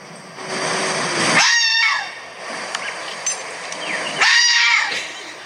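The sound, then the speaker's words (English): A red fox gives two loud, hoarse screams a few seconds apart, each a harsh, wavering, high-pitched shriek rising and falling in pitch over a steady hiss of background noise. “That is a red fox.”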